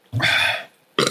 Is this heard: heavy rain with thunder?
no